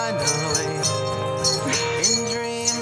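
Jingle bells shake in a steady rhythm, bright metallic bursts recurring roughly every half second over an upbeat tune with a melodic voice, all at moderate loudness.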